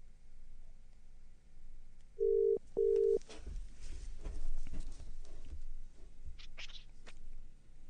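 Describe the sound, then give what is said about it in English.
Two short, steady telephone tones beep in quick succession as someone dials to phone back a caller, followed by several seconds of rustling and clattering handling noise, with a few faint higher chirps near the end. No one speaks. “Shall I try and phone them back?”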